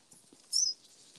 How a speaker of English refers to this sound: Oh, that rain.